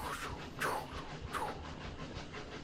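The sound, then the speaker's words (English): A train rolls along the rails with a steady rhythmic chugging and clatter, punctuated by two brief hissing bursts, with no voices. “The chugga-chugga gets a little bit more...”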